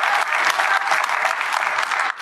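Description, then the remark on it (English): A crowd applauds loudly and steadily, a dense wash of clapping hands that holds even for about two seconds before a brief dip near the end; it is a round of applause for a young volunteer who runs the soundboard. “Just give him a big round of applause.”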